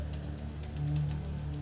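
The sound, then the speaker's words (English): Quick, irregular clicks of keys being typed on a computer keyboard, fairly soft, over a steady low hum. “I'm typing things.”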